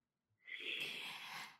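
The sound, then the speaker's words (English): A single deep, airy breath, swelling quickly and holding steady for about a second with no talking around it. “So just take a deep breath.”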